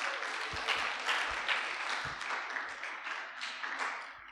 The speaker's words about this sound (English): Let's clap for him as he comes.